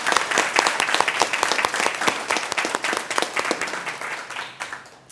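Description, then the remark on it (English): An audience bursts into sustained applause for award recipients at a human rights award event, a dense crackle of many hands clapping at once that holds steady for several seconds before gradually thinning out toward the end. “Can we give them all a round of applause again one more time?”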